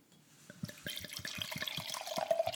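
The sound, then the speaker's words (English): Wine, a 2015 Phoenix, glugs steadily into a big glass, a rapid run of gurgling pulses that grows louder and brighter as the glass fills, with a rising ringing tone near the end. No one speaks. “What we've got here is the 2015 Phoenix. Oh, it sounds so good.”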